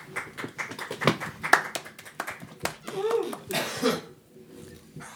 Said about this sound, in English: Well, you guys were supposed to clap for like a little for a while.